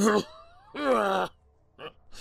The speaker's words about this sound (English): I wake to find its tendrils around his neck while he struggles to inhale. I watch quietly, and when his coughing subsides, he takes a wheezing breath.